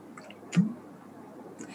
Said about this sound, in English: excuse me, oh, I'm going to have a sip of water.